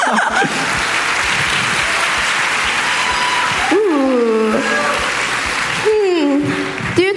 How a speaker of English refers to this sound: Okay, so how many of you think Group A deserves to win? Can you give a round of applause?